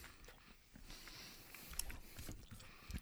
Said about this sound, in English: Sorry, I'm chewing on a Zarbot.